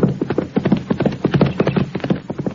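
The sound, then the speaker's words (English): Horse hooves clip-clop in a quick, steady rhythm, fairly loud, with many hoofbeats in rapid succession and no voices, as a deputy rides up on horseback. “Here comes the deputy I pushed from his horse.”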